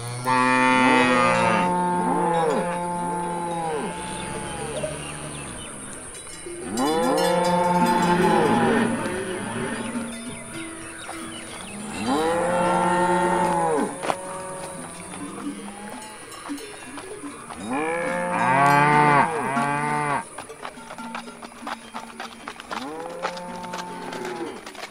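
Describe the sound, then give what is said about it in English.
A herd of cattle lowing and mooing restlessly, several long, loud calls overlapping in bursts, with a steady high tone running underneath throughout. “There's something after those cattle.”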